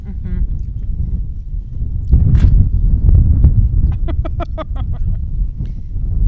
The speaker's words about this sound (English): So Chicago's windy. For our listeners, Chicago's windy in general. It's not why we're called the Windy City, but tonight is particularly windy.